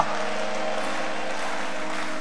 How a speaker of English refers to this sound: If you are really excited, clap your hands and let me hear you shout a big hallelujah.